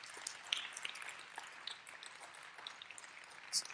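A church audience at Lakeview applauds its staff team, a dense, steady patter of many hands clapping at once, fairly soft and even throughout, with a few sharper claps standing out and no voices.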